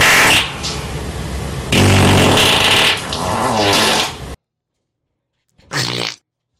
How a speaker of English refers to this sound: After a hospital visit, doctors told her that the excessive windbreaking was taking a toll on her body.